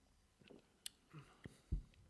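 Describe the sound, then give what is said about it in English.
A quick sip of beer: a light glassy tick, a soft slurp, then a muffled swallow, all quiet with no talking. “It definitely seems to have some lightness to it, but I'm going to give it a quick sip and we'll find out.”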